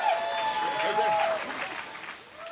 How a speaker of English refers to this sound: the jacketed, you're not clapping enough. Clap more for Harlan Williams, or he'll never come back to San Francisco.